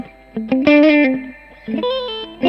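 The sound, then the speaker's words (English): A few bright, sustained electric guitar notes and chords from a P90 pickup ring out through an amp's push channel with reverb, some compression and a touch of grit, played in two short phrases with a pause between. “And that's on the push one, so there's kind of a bit more compression.”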